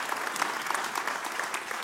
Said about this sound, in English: Okay, a word of warning here about clapping. Some of you that are Lutherans are like, what is happening right now? This is the clapping breakout in the service.